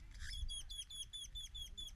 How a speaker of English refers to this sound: The birds are right above me. Hopefully they don't shit on us.